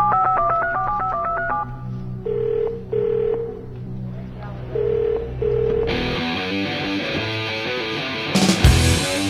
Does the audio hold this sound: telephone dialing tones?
yes